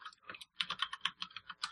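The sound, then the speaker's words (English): Fast, steady typing on a mechanical keyboard with brown switches: a quick run of soft, crisp key clacks with a brief pause early on, fairly quiet, with no voices. “Yeah, that is one cool board for keys. At least he did pick the proper key flavor, which is brown.”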